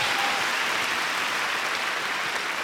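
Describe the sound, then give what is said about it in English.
A crowd claps steadily, a dense wash of many overlapping hand claps at even loudness with no pauses and no voices. “If you're going to clap, give the Lord a better clap than that.”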